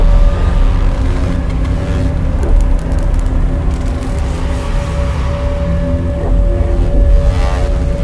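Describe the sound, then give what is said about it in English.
Sonified gravitational wave chirps of a lighter black hole falling into a very heavy black hole: a series of rhythmic thumping pulses over a dense, steady low rumble with humming tones, fairly loud throughout, with no voices. “The sound you're hearing is a light black hole banging on space each time it gets close.”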